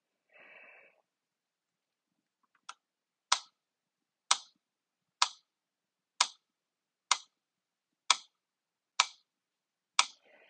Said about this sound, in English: And for our first version, I'm going to clap using quarter notes or tap using quarter notes and half notes while I'm saying the words out loud.